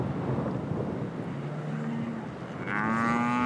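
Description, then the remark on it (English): Highland cattle in a herd mooing outdoors in answer to a rancher's call, in a valley at over 7,500 feet in winter: a low, drawn-out moo, then a louder, rising bellow near the end, over steady wind-like background noise. No one speaks. “This breed of cattle originated in the rainy, cold highlands of Scotland.”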